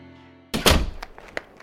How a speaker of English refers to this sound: As Mitch flails his arms about, Jason, whose right arm has Mitch pinned to the machine, reaches his left hand to grip the back box and pulls it down onto Mitch's head. Mitch's legs twitch wildly for a moment before going limp.